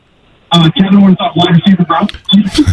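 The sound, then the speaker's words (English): A muffled, tinny voice comes through a phone line, like a radio broadcast bleeding back into the call with a slight echo. The garbled talk runs steadily for a couple of seconds. “That's why I never turn my radio down, because I don't want to miss anything he says. Sounds like Peanuts.”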